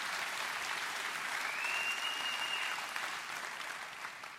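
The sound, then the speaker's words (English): An audience applauds in a steady, dense wash of clapping that holds for several seconds and eases slightly near the end, with a brief high whistle rising out of it midway. “Okay, now you can clap.”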